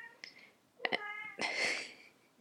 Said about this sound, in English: I don't know if you can hear the cat.